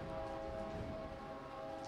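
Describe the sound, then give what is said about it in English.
A train rolls past on close-by tracks, a loud, continuous rumble with a steady droning tone riding over it, filling the whole moment with no voices. “That's the loudest that train. The tracks are not one. That close.”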